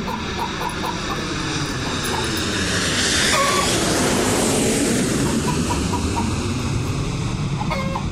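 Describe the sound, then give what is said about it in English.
A jet-propelled chicken roars steadily past like a jet aircraft, its pitch sweeping as it swells to a loud peak midway and then recedes, with chicken clucking mixed into the noise for comic effect. “the motorised aardvark, and, of course, the jet-propelled chicken. In fact, here comes one now.”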